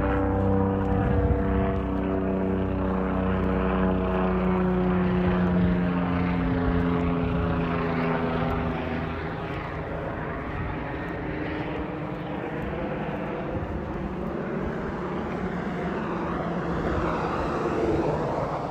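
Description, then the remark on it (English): A helicopter passes overhead in cold weather with a little wind, its rotor and engine making a loud, steady droning hum that holds for the whole stretch, with the pitch slowly shifting as it moves. No one speaks. “We got a helicopter overhead.”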